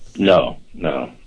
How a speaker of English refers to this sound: Oh, sorry. My dog's barking.